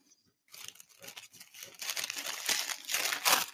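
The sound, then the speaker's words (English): Continuous crinkling and rustling of little circles of tissue paper being unwrapped from wrapped items, starting after a brief silence and growing busier and louder with sharp crackly bursts toward the end. “This is going to be very rustly, isn't it?”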